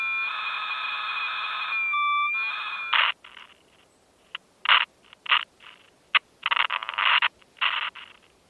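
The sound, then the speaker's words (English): Radio interference: a steady, buzzing electronic whine with a wavering high tone for about three seconds, then irregular bursts of harsh crackling static cutting in and out. No one speaks. “The radio interference continued.”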